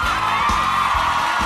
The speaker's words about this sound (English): For a moment, you looked like you were just soaking in the applause.